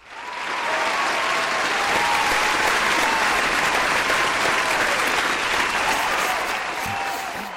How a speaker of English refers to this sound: I'm not going to say a word until after the applause.